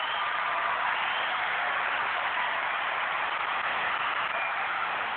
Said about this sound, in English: They seem to cheer longer this time.